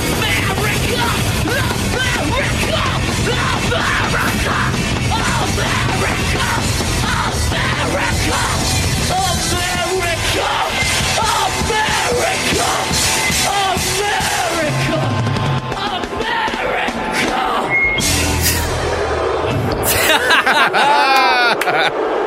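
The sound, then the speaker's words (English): A WWF WrestleMania 14 arena crowd roars loudly and continuously, with yells, whoops and cheering blending into a dense wall of noise, and an announcer-style voice shouting over it near the end. “And listen to the crowd response. It's such a big reaction.”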